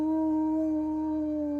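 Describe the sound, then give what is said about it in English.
A person's voice imitates a small fox's tiny howl: one steady, sustained, pitched tone held for over a second, moderately loud, with no other sounds around it. “She'll howl with them. Just teeny, teeny fox howl.”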